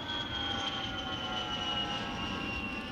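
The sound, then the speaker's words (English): A steady, loud airplane engine drone with a whining tonal hum, sustained throughout as the plane passes by down a street. No voices. “But was it really necessary to take a plane down the street?”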